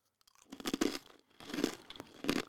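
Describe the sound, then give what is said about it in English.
Crisp crunching of a garlic parmesan pretzel from a local brand being chewed, three bursts of dry, crackly bites separated by brief pauses, with no talking. “Can you hear me crunching that?”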